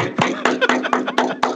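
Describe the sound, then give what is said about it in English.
Several people knock on wood in excitement that the NFL is back, in a quick, fairly steady rhythm, about six sharp raps in a row, with chuckling and voices murmuring underneath. “If you're with me that you're fucking excited NFL's back, knock on wood with me, gentlemen. Knock on wood.”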